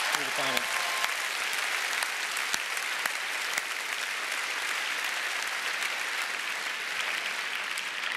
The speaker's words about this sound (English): Can we give God a round of applause for what He has done?